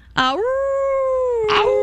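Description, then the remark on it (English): A person imitates a werewolf howl: one loud, drawn-out vocal wail that swoops upward, holds a steady pitch for over a second, and breaks off with a rough, breathy ending. “I think it's just a wolf, you know.”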